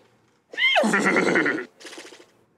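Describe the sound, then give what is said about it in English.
A person vocally imitates a horse whinny: a loud, rising-then-falling neigh with a shaky trill lasting about a second, followed by a shorter, quieter snort-like burst. “Is this a horse or is it Michael Winslow from Police Academy?”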